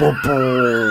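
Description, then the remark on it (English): A voice mimics vinyl scratching, as if remixing with a vinyl record, with a quick, sliding vocal squeal, pitch sweeping up and down in short rubbery strokes, lasting about a second. “Even now, sound like again, the listener can't see you're sort of pretending to remix here with a vinyl record.”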